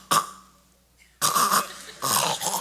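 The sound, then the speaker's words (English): A voice imitates irregular, non-rhythmic snoring: a short rough snort, a pause, then two longer raspy, guttural snorts in uneven succession, fairly loud with no talking. “Especially non-rhythmic snoring.”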